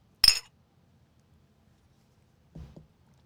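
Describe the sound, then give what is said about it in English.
A single bright glass clink rings out sharply near the start as glasses are clinked in a toast, followed by silence and then a soft low knock, like a glass being set down, about two seconds later. “All right. Cheers. Todd, cheers. Cheers.”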